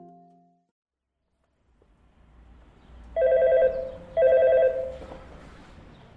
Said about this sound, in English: I'm ringing the bell on the front door of the school when a woman rolls up in a Porsche convertible with the top down.